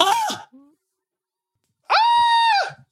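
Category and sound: human body sound, person screaming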